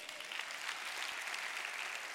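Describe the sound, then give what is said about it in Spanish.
An audience applauds together in a dense, steady wash of clapping at an even level, with no voices standing out, giving themselves a round of applause during a Spanish-language church sermon. “Date un aplauso.”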